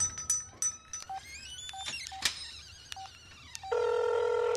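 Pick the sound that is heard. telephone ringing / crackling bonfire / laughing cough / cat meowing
telephone ringing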